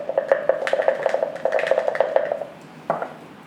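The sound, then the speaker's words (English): A six-sided die, rolled for a damage roll in a tabletop role-playing game, clatters and tumbles in a rapid burst of small, bright clicks for a couple of seconds, then a final clack or two as it settles, landing on a 6. No one speaks. “So, I'm going to use my boogie boogie dice.”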